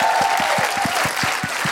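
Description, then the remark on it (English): An audience at a BFI event applauds steadily, a dense wash of many hands clapping at a sustained, loud level with no voices on top. “Okay, just a big round of applause and thank you to the BFI for having us.”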